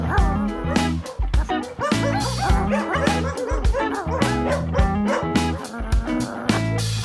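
A dog barks and yips repeatedly, the loud, rapid outbursts mixed with high whimpering whines that carry on without pause for several seconds.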